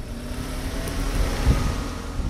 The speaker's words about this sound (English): His teenage sons carry their belongings out of the house and load them onto a pickup truck. It's dusty and windy out, so we sit in the car to chat.